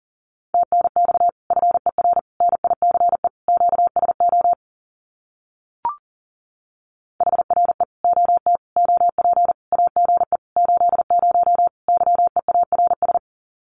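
Rapid Morse code at about 40 words per minute sending common amateur radio QSO phrases, a steady mid-pitched tone keyed into quick dots and dashes, sent in two long runs split by a short pause with a brief click.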